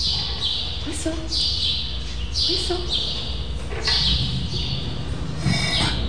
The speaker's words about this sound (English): Oh, you'll whistle for the microphone? Whistle on.